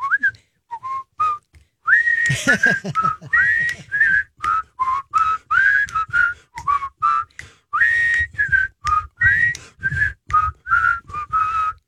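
Someone whistles the Andy Griffith theme tune, a steady run of short, bright notes bouncing in a brisk rhythm for about twelve seconds, with no talking.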